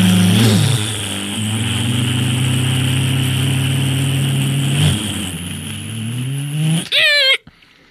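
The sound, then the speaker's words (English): A loud race car engine drones steadily, its pitch dipping and surging as it revs, then whines upward sharply before cutting off near the end. “went off in a race car, and I came back to get my spinny stick.”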